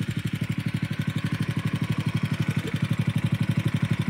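The small engine of a high-pressure fire pump runs steadily at a fast, even idle, its rapid pulsing beat unchanged throughout, with a broad mechanical hiss layered on top and no one speaking.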